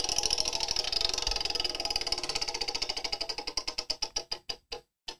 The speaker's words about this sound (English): All right, I'm going to spin the wheel. You ready? Let's see what we got next.